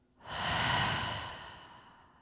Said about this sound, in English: Now try and extend your breath just a little bit, breathing in a little deeper. And a little longer on the exhale out.